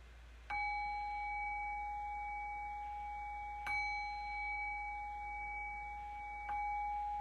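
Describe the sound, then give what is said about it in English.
A meditation bell is struck three times at a slow, even pace to close a meditation practice, each clear metallic tone ringing on and blending into the next. It is moderately loud, with no voices. “I'll do that by ringing the bell 3 times to cue that.”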